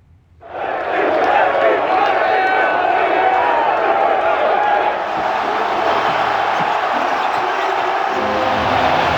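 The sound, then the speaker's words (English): A huge stadium crowd erupts into a sustained roar of cheering after a brief quiet start, loud and dense throughout with scattered shouts and whoops rising from the mass of voices. “Does it not feel like this could be forever remembered as the week the crowds returned?”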